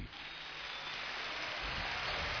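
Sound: applause sound effect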